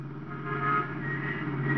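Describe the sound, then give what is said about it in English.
A car engine drones steadily as an unmarked police car drives off, a low, even rumbling hum with no one speaking. “Walt and I jumped into an unmarked police car and played follow the leader.”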